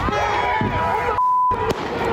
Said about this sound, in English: Kind of mob surrounding the car. You heard a shot fired. And then the SUV just takes off.